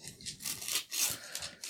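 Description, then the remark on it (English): Gift wrapping paper being torn and crinkled open on a long present that holds a roll of gift paper, a run of bright, rustling bursts and scratchy rips with short pauses between them. No one speaks. “You can go ahead and open this right now.”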